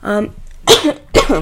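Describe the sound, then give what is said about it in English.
A few harsh coughs come in quick succession, each a short breathy burst with brief pauses between, loud with no talking over them. “I have a bit of a cough.”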